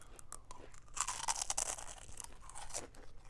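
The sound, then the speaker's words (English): Loud crunching of a bite into crisp, slightly stale Taco Bell food, a burst of brittle cracks and rustling texture lasting a few seconds, with no talking. “Yes, we stopped at Taco Bell and we are super duper excited to can I give them the first crunch?”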